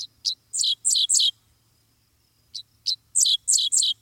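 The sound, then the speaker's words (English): A Dickcissel, a bird of the cardinal family, sings twice from a fence line along a country road in Kansas on a summer morning, each phrase a couple of short, sharp high notes followed by a quick run of buzzier chirps, separated by a brief pause. There's a faint low hum underneath. “Half insect, half sci-fi blaster, this song belongs to a bird called the Dixisle, whose name spells out the syllables of its quirky song.”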